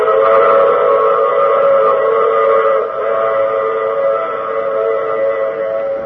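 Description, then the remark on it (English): A loud train whistle blows in one long, steady blast, its chord of tones held for several seconds without a break, dominant with no voices. “I take this same train every week at the same time.”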